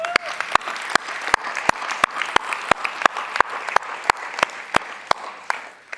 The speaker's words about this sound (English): Who feels like just giving that a round of applause?